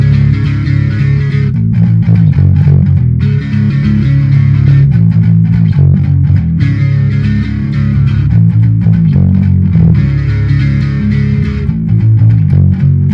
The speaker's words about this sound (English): I'm going to turn off the poly blue. I'm going to turn on my distortion setting, and I would have already had on the reverb.